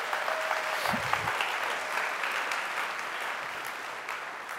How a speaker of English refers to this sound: Give the Lord a hand clap of praise for that.